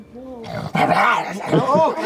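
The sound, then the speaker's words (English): A person's voice imitates a wolf, making a couple of drawn-out, wavering whimpers and whines with a slightly growly edge, fairly loud, lasting about two seconds. “Oh he seems sad. Oh, he's a sad wolf.”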